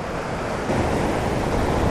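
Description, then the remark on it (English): Ocean waves roar and crash steadily onto the shore, a dense, continuous wash of surf that swells slightly louder midway, with some wind rumble and no voices. “Wow, I can't believe these waves.”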